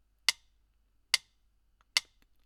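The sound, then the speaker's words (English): Three crisp metronome ticks at an even, unhurried pace, a bit under a second apart. Each is a sharp, bright click that fades quickly into silence, with no voices. “Those wanting to sleep, tune out of my voice, listening only to the metronome.”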